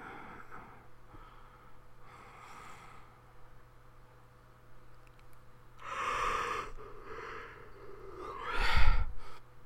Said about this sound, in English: My ear popped. I yawned and my ear popped.